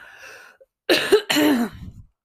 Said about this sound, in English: And then I'll go ahead and just cough in your ear.